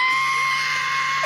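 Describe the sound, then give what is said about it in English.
A man's voice imitates an F-35 fighter jet flying over his house in South Carolina, a sustained, shrill, strained screech, loud and continuous for about a second before breaking off at the end. “I heard a screeching, between a screech and a...”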